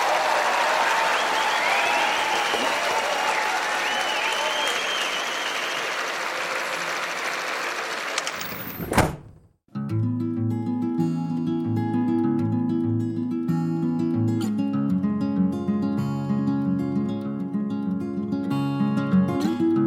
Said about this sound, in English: And you get a round of applause from the Wildlife Garden Podcast's Auto Clap-O-Matic 3000. Are we still going with that? Yeah. Auto Clap-O-Matic 3000, engage.